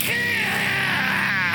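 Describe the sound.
A zombie dog sound effect, the sound of Archie's zombie dog returning from the dead in the comic Afterlife with Archie: a loud, harsh, continuous snarling groan with raspy, wavering tones that bends in pitch, lasting under two seconds with no talk over it.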